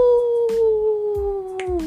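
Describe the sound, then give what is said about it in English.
A person imitates a wolf howl for the Wolf Moon, the first full moon of the year: one long sustained wavering note that slowly falls in pitch over about two seconds, loud, with a few faint clicks behind it. “This is the Wolf Moon. Ow!”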